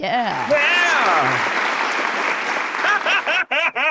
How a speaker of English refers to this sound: I appreciate you doing that canned applause. That's our wonderful. That's our sound booth that we finally have working after 2 years of tinkering with it.